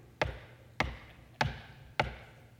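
Four sharp, evenly spaced knocks on the hood of a car, each followed by a brief ringing tail, fairly loud with no voices.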